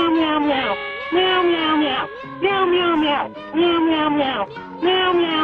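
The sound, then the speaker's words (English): Five loud, drawn-out meow-like calls from crows follow one another almost without pause, each a nasal, wavering cry rising and falling in pitch, clear with no talking. “In regards to some of these crows that call, sometimes, man, they sound like little kitty cats.”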